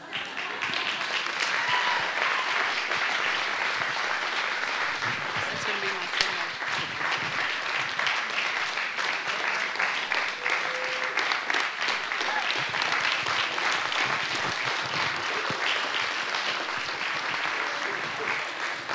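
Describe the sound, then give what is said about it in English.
A crowd gives a long standing ovation at the close of a service, a dense and steady wash of clapping that holds its loudness for about nineteen seconds, with scattered voices mixed in. “Never received an applause, a standing ovation just to close a service.”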